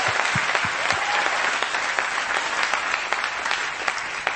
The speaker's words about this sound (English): It is such an honor to stand before this church, and it is especially an honor to stand before these awesome graduates. Can we all give them a round of applause for their accomplishment?